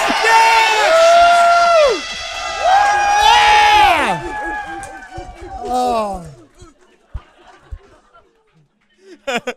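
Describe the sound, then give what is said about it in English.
Several voices hoot together in long, wavering pitched calls, imitating owls. The calls end in falling glides, followed by scattered short vocal bursts and chuckles. “I really appreciated the hooting.”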